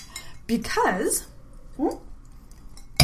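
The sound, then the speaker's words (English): Wine glasses of rosé clink together in a toast, a sharp bright tap near the end, following a few moments of voices chattering. “So today, guys, we're drinking rosé. Yes, we are. Cheers.”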